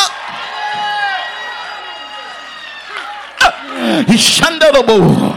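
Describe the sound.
After a sustained, droning vocal tone, an audience's voices erupt in loud, overlapping shouts, answering a preacher's call to shout "I still have oil." The shouting comes in energetic bursts as the crowd calls out together.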